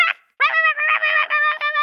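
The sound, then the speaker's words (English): A caller's dog vocalizes over a thin telephone line: one short yelp, a brief pause, then a run of high, drawn-out whining barks that blur together, fairly loud and with no talking. “Is that a dog?”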